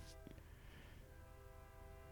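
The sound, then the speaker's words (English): A train passes, a faint, steady rumble with a sustained horn-like tone hanging over it throughout the short stretch; no one speaks. “Should we give the train a name?”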